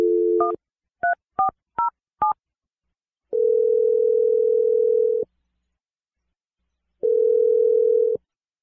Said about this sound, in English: I'm going to dial Ellie's phone number right now and get your second date update